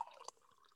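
A faint, brief trickle of traditional mead, made from Zambian wildflower blossom honey, poured into a glass, with a small liquid splash at the start, then fading to a quiet gurgle. No one speaks.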